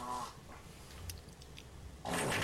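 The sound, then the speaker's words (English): A "nuclear fart" sound effect pulled up from an online search: a brief buzzy, low rasp at the start, a quiet stretch with a few faint clicks, then a sudden loud, harsh blast of noise that roars to the end. “That's nuclear fart.”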